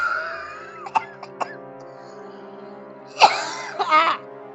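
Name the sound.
a person coughing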